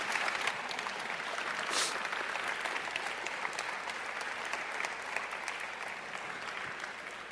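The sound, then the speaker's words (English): A church audience gives a round of applause, clapping steadily for several seconds, a dense, even patter of many hands at moderate loudness that holds throughout with no voices over it. “Let's give Allie a round of applause.”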